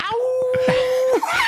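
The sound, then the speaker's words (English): A person's voice imitates a wolf howl for Halloween, a sustained steady mid-pitched wail that holds for about a second before dropping off, with some brief vocal sounds around it. “Give us a little wolf howl.”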